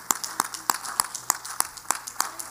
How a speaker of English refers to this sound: Hallelujah, hallelujah, hallelujah. Let's clap our hands to the Lord and praise Him right now. Bless the name of Jesus tonight.